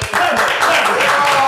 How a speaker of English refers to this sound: Clap that up.